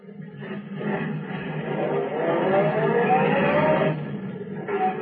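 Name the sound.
car driving off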